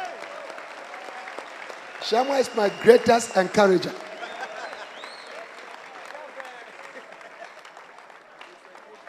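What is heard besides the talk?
audience clapping hands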